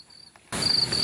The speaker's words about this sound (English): Accompanied by the endless chirping of 1,000 insects, these branches appear festooned with pink fairy lights.